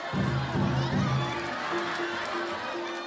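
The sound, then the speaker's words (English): A kabuki theater audience shouting out during a performance, yelling 'Narita-ya!': a dense crowd of voices with several drawn-out calls rising above the murmur, steady and moderately loud throughout. “You'll also hear audiences during these performances yelling out, Narita-ya!”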